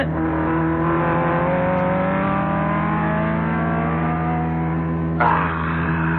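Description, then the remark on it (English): A loud racing car engine roars steadily, its pitch climbing slightly as it speeds past another car, with a sudden burst of harsher noise near the end. No one speaks. “He's going to pass you. Impossible. Not only possible, but there he goes.”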